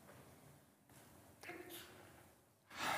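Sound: sneeze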